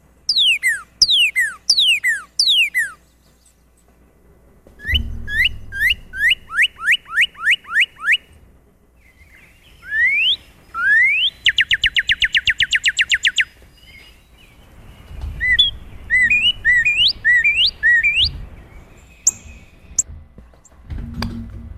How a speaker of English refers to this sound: Okay, so that's the northern cardinal.